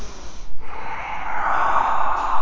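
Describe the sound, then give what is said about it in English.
A single sneeze: a quick snorting intake followed by a long, breathy, hissing burst that fades out, with no talking. “Bless you.”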